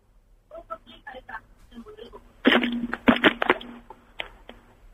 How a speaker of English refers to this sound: I think he's tried to slam the phone down there and muffed it up. Ooh. Yeah, you haven't put the phone down.